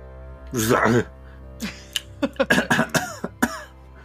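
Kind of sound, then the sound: human body sound, cough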